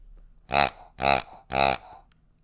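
A latex chewy pig dog toy squeezed three times in a steady rhythm, each squeeze giving a loud, buzzy, honking grunt with a rich harmonic tone, with no talking over it.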